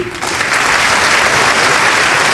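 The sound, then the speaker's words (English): Sustained, loud applause and standing ovation from a large audience in the chamber of Congress in 1992 after Queen Elizabeth II is presented to give a speech. A dense steady wash of clapping swells in after a brief moment and holds without pause, with no voices rising above it. “And after a very, very long applause and standing ovation, she looked patiently, poignantly around the audience in the chamber, waiting for her moment to begin a historic speech this way.”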